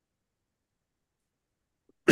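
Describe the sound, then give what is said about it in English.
Near-silence, then one sharp, loud cough bursts out close to the mic right at the end, cut off abruptly. “Sorry, I don't mean to cough into the microphone.”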